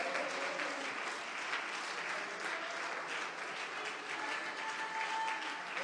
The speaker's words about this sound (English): I want to tell you, it is the name of Jesus. Come on, let's clap our hands unto the Lord.